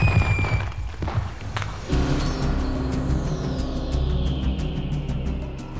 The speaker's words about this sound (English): Oh man, I love fireworks!